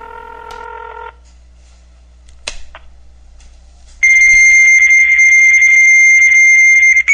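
Telephone line tones: a brief chord of electronic beeps, a pause with faint clicks, then a loud, steady, high-pitched dual tone that holds to the end, like a fax machine answering.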